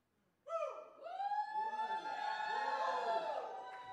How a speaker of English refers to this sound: We're not knocking many walls down with that shout, guys. That's not going to knock no walls down, but good try.